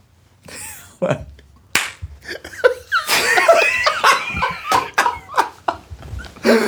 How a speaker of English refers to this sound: Okay. So that was my edit when you hear that clap. Here we go. Ready?